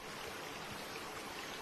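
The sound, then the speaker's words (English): River water flows steadily with a soft, continuous rushing and gentle trickling, fairly quiet and unbroken throughout, with no voices present. “One mother was not willing to let her son die, so she decided to put her son in a basket and put the basket in the river.”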